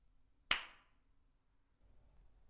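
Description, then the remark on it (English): A single sharp hand clap, made by one person clapping alone in their room to mimic a slap, cracks out loud, then rings briefly before fading into quiet room noise. “You slapped me. Yeah, you're me. Come on. So you slapped yourself. Well, I mean, I don't know. Kind of, I guess. I clapped by myself in my room.”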